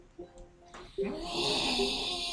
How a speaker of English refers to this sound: Yeah, I just sort of get up and sort of stretch and do like a ridiculously large yawn.